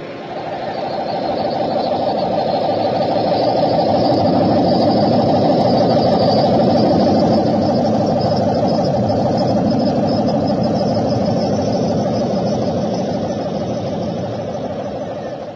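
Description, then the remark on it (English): A meteor's deep, rushing roar over Maple Street on a late summer evening swells up, holds loud and steady for several seconds, then slowly fades away. No voices, just a continuous rumbling with a faint hiss on top. “No, I didn't hear anything except a roar.”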